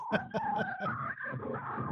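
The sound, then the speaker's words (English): Electric guitar whammy bar chirps played with a guitarist's technique: a run of quick, squealing pitch-bent stabs followed by a sustained, wavering tone that bends and warbles, fairly loud with no talking. “I like that you can get a lot of chirp.”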